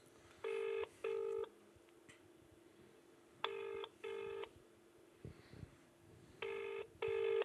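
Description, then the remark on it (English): A telephone ringing tone heard down the line, repeating in three double-burst pairs about three seconds apart, clear and steady with no one picking up and no voices. “That's who I'm ringing if these don't fucking answer.”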